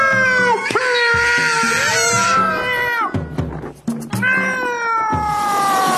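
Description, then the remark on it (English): Cats screech and caterwaul loudly, a few long, wavering yowls rising and falling in pitch, overlapping and drawn out, with a brief pause between the howls. “Loud sniffing and scratching noises, which was followed by the most terrible screeching and screaming.”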